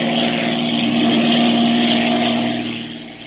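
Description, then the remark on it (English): A propeller airplane with a tampered, crippled undercarriage drones steadily in flight as the pilot prepares to land. A loud, continuous hum with strong harmonic tones fades slightly toward the end. No voices are heard. “Will our friends crash when the pilot tries to land his crippled plane?”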